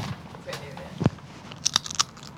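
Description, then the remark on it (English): A sharp crunchy bite of a dried orange chip snack, followed by a few brittle crackling crunches as it is chewed, over a quiet background. “Make sure my mic gets the crunch.”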